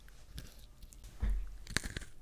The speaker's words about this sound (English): You know, and I always forget until I take a bite that sugar cookies are my least favorite cookie. Hey, you know, sugar cookies can be very good, but I prefer a soft sugar cookie situation. Yeah, you can hear that crunch.